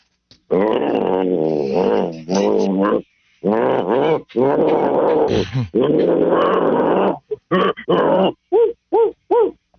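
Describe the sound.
A male caller on a phone line imitates the Panther guard dog, with long rumbling growls and snarls, then a quick series of short, sharp barks, all sounding slightly thin.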